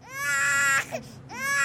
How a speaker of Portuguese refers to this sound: O bebê começa a chorar.